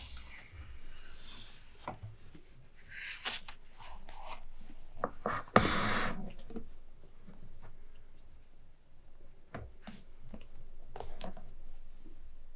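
Soft scratchy strokes of a pen or fingertip tracing lines across a paper map of Amsterdam, coming in irregular bursts with one longer, louder swipe midway, no voices.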